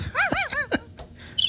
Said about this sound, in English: Bro, that's crickets. That sounds like a broken raggedy tricycle. Broken raggedy unicycle. Sound like a penny farthing.